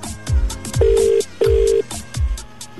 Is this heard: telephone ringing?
yes